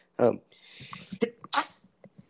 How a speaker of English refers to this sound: Sorry, I had to sneeze.